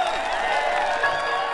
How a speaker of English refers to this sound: As the big truck carried Ruby away from the mountains, she noticed something strange happening. Everywhere she went, cheering townspeople lined the streets.